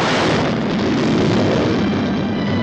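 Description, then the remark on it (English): A dense, steady roar of aircraft engines fills the whole stretch, loud, with a deep rumbling low end and no voices over it. “I've got planes out there.”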